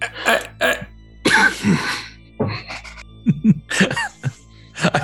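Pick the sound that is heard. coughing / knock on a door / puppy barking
coughing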